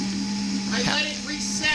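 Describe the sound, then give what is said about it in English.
An electric blender runs with a steady motor hum and a high whine, its pitch wavering slightly as the blades work, while faint voices murmur underneath. “We have a reset button on the blender.”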